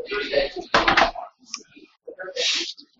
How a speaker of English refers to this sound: All right, I'll close the door really quick. That'd be a good idea.